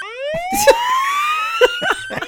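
A siren alarm sound effect marking a Spoiler Alert segment wails in one long, steadily rising sweep, bright and harmonic, holding loud for about two seconds while a few short percussive clicks and thumps punctuate it.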